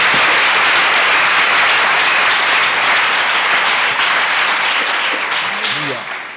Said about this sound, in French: Amen. Applaudissements.